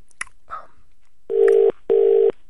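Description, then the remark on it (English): A telephone number being dialed to call a man: a sharp click and a soft rustle, then two steady, evenly pitched electronic tones, each lasting under half a second with a short gap between. No one speaks. “Is there a reason why you're not calling him up? I'll call him.”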